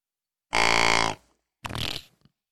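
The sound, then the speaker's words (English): Two short blasts on a deer grunt tube call blown without bending the tube: a loud, steady, buzzy honk lasting about half a second, then a rougher, raspier puff after a brief pause, sounding flat and fart-like. “A deer fart. Because you didn't bend the tube.”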